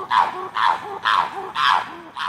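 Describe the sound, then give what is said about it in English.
Chimpanzee calls at Chimp Haven, the largest chimpanzee sanctuary in the world, in northern Louisiana: five loud, breathy hoots in a steady rhythm about half a second apart, each followed by a short, lower rising note, with no talking. “This is Chimp Haven, the largest chimpanzee sanctuary in the world.”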